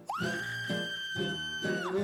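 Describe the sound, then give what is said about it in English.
One long, piercing scream holds a steady high pitch for about two seconds before trailing off, with lower voices or crowd noise rumbling beneath it. “Just like the ones in Germany, where in treetops that glisten, the Krampus still listens to the sounds of the screaming down below.”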